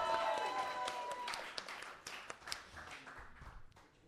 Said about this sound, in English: What, you want the fucking applause?